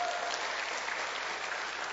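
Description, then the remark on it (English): A church audience applauds the speaker's wife for their 22 years together, a dense wash of clapping that holds a fairly even level for the whole stretch, with no voices rising above it. “That applause is for my wife.”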